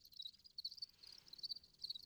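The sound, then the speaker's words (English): Farmed crickets in an apartment chirp steadily in a high, shrill trill, pulsing in repeated bursts over a faint low background hum, with no voices present. “My original ambition was to learn enough about farming the crickets in my apartment to the point where I felt comfortable with like renting a warehouse or some kind of space where I would do commercial production of crickets and sell them for people”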